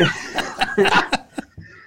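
A person sputters through a choking cough that breaks into laughter, with several sharp bursts that trail off into smaller, spaced-out coughs.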